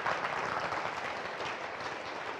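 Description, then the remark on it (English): An audience claps steadily together in agreement, a dense wash of many hands applauding at an even loudness throughout, with no voices standing out above it. “I think right there you just ought to clap. Just agreement, just clap to say, I'm going to run it.”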